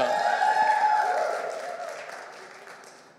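An audience applauds, a dense, steady patter of many hands clapping, with some voices mixed in, gradually softening and fading out over about three seconds.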